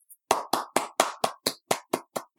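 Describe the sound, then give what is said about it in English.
Hands clapping in applause: about ten sharp, crisp claps in a quick, even rhythm, sounding like one person clapping steadily with no voices over it. “And I'm only applauding you because you're still sticking to your guns about Breath of the Wild.”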